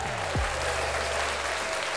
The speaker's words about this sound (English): I'm going to give all of you, my listeners, a round of applause and let you know I appreciate you.